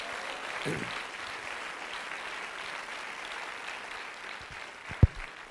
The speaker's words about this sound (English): If you believe that same Jesus, why don't you clap your hands just for a moment?